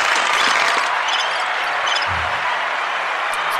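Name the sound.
crowd cheering and applauding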